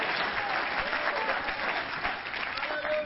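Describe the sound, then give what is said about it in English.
An audience claps their hands to thank God, in a steady, dense wash of applause that holds at an even, fairly loud level for the full few seconds. “Somebody clap your hands and thank God for that.”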